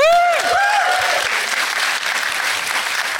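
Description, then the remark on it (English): Sustained audience applause as a guest is introduced, dense and steady throughout, opening with a few high whooping cheers that rise and fall over the clapping. “Sitting down and applauding like an idiot.”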